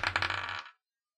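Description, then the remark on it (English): Purple dice, rolled for an athletics check, clatter and tumble across a hard tabletop in a quick burst of bright rattling clicks, fairly loud, then settle into silence after about three-quarters of a second. “Come on, purple dice.”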